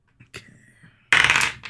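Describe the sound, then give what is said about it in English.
A new set of dice is rolled for an NPC, clattering across a hard surface in a loud burst of rattling after a soft click and faint hum, ending with a final small tap. “I'm going to roll for the NPC and see maybe if she would either recognize you or if you can get her attention.”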